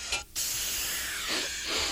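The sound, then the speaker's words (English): An aerosol air freshener sprays a lilac scent in a stuffy room to cover the smell of cat mess: a quick puff, a brief pause, then a long, steady hiss of spray lasting more than a second, with no voices. “Say, it's a bit stuffy in here. And I know a certain someone who really fancies lilac.”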